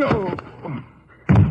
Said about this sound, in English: Hey, you slugged him with the gun.